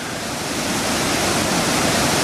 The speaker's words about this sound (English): And you couldn't hear it when it was raining because, the noise of the rain on the fly, then sort of muffled the noise of the creek. So I've unzipped the tent. But this thing, this tiny little waterfall, just went to this thundering, like...